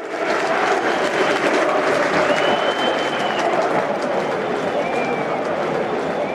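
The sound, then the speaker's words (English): A dense, steady roar of Chelsea fans chanting a name in the stadium at a Premier League away match against Burnley, a broad wash of massed voices that holds constant throughout, with a thin high whistle-like tone briefly rising above it. “Chelsea fans chanted his name throughout.”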